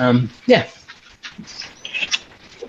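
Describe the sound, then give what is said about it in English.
Dogs checking out a window give a couple of short barks and whiny yelps, followed by quieter snuffling, scratching and faint high squeaks, with a muffled voice in the background. “couple of dogs just checking out the window.”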